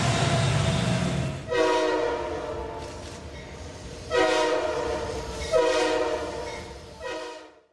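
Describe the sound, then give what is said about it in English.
A train horn blasts several times in a row, loud, with strong harmonic tones over a low rumble of rolling rail cars, then cuts off abruptly at the end. “All aboard. All aboard the Taysom train.”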